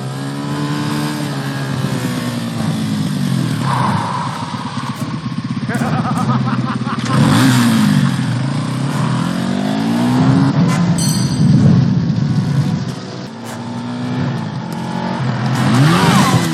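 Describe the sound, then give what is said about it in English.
A motorbike engine revs repeatedly, its pitch climbing and dropping in loud surges, then roars up steadily as the bike pulls away, with a final rising rev at the end. “Unfortunately, having to stop his motorbike so he can laugh is exactly the time that Dalton needs to tackle him off the bike when he sets off again.”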